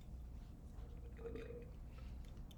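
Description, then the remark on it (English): Someone takes a quiet sip of hot tea, with a brief slurp midway and soft wet mouth and swallowing sounds against a low background hum. No one speaks. “I'm just going to take a sip of my tea.”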